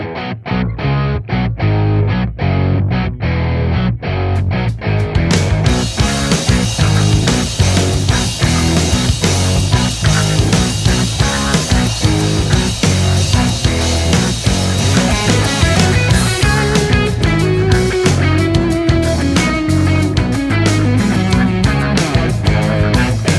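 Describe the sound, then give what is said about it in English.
A loud instrumental rock track from a guitar player's new album, previewed before release, with driving electric guitar over steady drums, playing continuously with no vocals; the sound opens up and brightens a few seconds in. “It is. And it's actually out September 8th, but we're going to preview it right here. You're going to hear some juicy tracks.”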